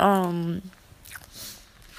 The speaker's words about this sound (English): Too bad you can't join me in on my chocolates. They're quite nice and crunchy. How pity of me.